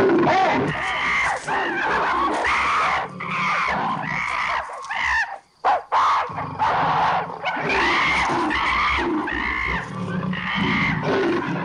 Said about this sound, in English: The ape screeches a lot and makes a puny attempt to fight the leopard off.